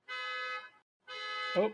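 A car alarm blares in two long, steady honks with a buzzy, flat pitch, separated by a short gap. A voice briefly overlaps the end of the second blast.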